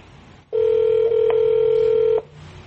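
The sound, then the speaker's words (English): A phone line's ringing tone sounds once as a steady electronic tone lasting under two seconds, fairly loud, with faint background hiss before and after and no talking, as an Alexa Connect device places a call to a cell phone. “So now it's calling my house, actually my cell phone, and it does come up with the house number as the number that is calling.”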